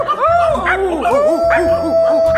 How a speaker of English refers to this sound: In the village of Portishead, that the skies were darkening and ears were hearkening as stray dogs were barking.